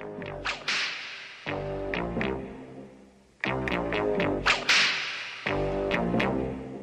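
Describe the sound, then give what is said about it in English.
Sharp whip cracks snap out repeatedly in rhythmic bursts over a loud, steady musical backing, each crack bright, coming in quick clusters with short pauses between. “Where there's a whip, there's a way.”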